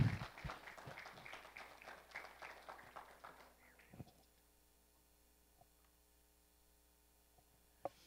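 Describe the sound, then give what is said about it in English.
A church audience applauds the praise team in a quick burst of scattered clapping that fades out after about four seconds, leaving a low electrical hum and a couple of faint knocks. “Hey, give them a hand clap of yes.”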